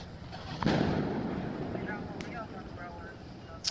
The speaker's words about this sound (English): Those in the crowd let off a series of fireworks and chants of, "Wow, everyone hates the police." Let's hear this. And this is a clip of fireworks in front of the jail while cops on radio call for transport with riot gear.